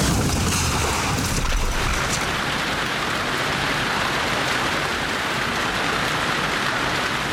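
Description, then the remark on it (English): Heavy June rain, the heaviest of the month, pours down on a drive home from Mexico City in a dense, unbroken hiss, loud, with a deep rumble at the start before settling into a steady downpour. “That June, in the heaviest rain of the month, my father blew a tire on his way home from Mexico City and lost control.”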